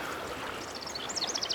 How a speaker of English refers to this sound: While at the moment listening to this, to the sounds that are coming in from everywhere, particularly the birds.